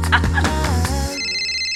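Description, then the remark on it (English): A phone rings with a loud electronic ringtone as the speaker's mother calls, a quick run of bright melodic tones settling into a sustained chime, with no talking. “I was just about to click post when my phone rang.”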